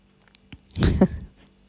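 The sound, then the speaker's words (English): A cat gives a single snoring breath, a short, rough, low rumble with a breathy hiss, lasting about half a second and rising out of near silence before fading away. “Can you hear my cat snoring?”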